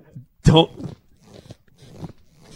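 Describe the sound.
A single loud, brief squeak of a leather chair as the sitter leans back, a pitched rubbing groan with a slightly farty tone, followed by quieter voices talking.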